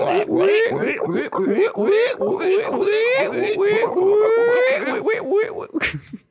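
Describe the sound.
A person's voice imitates pig squeals, a rapid string of high, rising, nasal squeaks repeated over and over with barely a pause, fairly loud and ending in a few breathy bursts.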